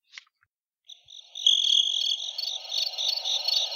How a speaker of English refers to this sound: Oh, God damn it. I got no crickets. I got to get the crickets now.